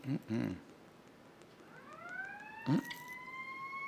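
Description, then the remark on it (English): A real fire station siren winds up from a low pitch into a steady, sustained wail, with a few short bursts of a man's voice talking before and over it. “That's a real fire siren from the fire station.”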